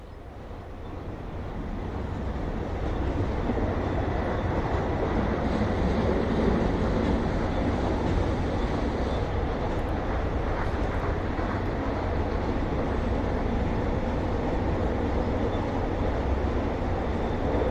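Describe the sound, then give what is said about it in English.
A low, steady rumble of a train far off, fading in over the first few seconds and then holding as a continuous broad roar with no talking. “Alexa, ask Nature Sounds for distant train.”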